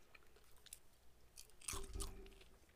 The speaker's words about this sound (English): I haven't noticed any of it, but to be honest, all I can hear is me crunching on popcorn, so.